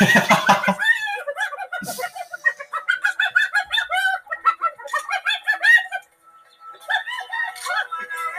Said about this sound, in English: Oh my god. They're monkeys. Monkey.